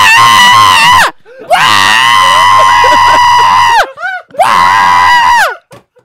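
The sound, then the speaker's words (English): A voice imitates a screaming mandrake from the Harry Potter world of Hogwarts with three loud, shrill, wavering shrieks, separated by short breathy gaps, the middle scream the longest. “It's a screaming mandrake.”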